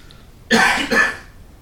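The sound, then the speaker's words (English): Two quick, harsh coughs in close succession, clear against a quiet background, with no talking. “So whether it's someone coughing or the wind outside, listen to sound.”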